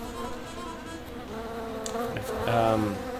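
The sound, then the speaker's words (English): A bee buzzes steadily, a continuous droning hum that swells slightly louder near the end as it rises and moves off while being released into the wild, with no voices. “We do give one of our bees away to Mother Nature so it can sow its seed in the wild.”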